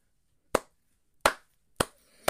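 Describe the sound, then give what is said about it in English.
Four slow, sharp hand claps spaced roughly half a second or more apart, each crisp and loud with a quick decay, and no talking between them. “I love a good clap. A good slow clap.”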